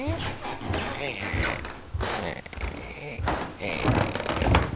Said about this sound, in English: Let's go up these creaky old stairs.